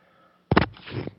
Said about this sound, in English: Sorry, coughing.